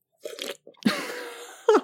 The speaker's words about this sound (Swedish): Sörplar.